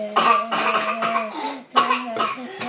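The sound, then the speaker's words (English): Several forced, voiced coughs in two bursts with a short pause between, fairly loud, sounding deliberate rather than natural. “And I get a fake cough from you.”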